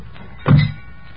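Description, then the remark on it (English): A single heavy truck door slams shut with a deep, solid thunk, fairly loud, then quiet low rumble afterward. No one speaks. “Slam the doors.”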